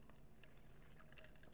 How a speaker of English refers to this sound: Hold on a second. Let me take a sip of my vitamin water.